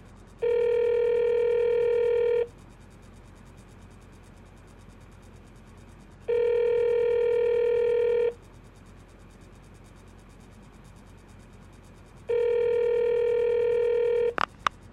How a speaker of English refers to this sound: Ringing Murray Hill 70093.